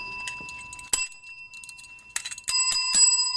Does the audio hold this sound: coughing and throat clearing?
no